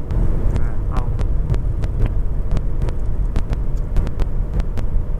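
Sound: cars passing by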